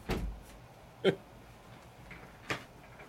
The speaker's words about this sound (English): You can claw at the door all you want.